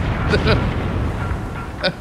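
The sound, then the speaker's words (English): A loud, rumbling dynamite explosion roars continuously for about two seconds, with a few sharper crackling bursts punching through the low, heavy boom. “There'll be fucking dynamite underneath his ass ready for a fucking explosion.”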